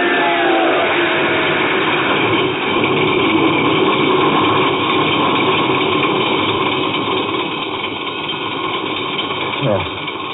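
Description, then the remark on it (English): A car engine cranks and catches as the starter finally works, then runs at a steady, rumbling idle before a brief rev rises near the end, loud with a muffled, narrow-band quality. “The starter worked at last. I managed to back up.”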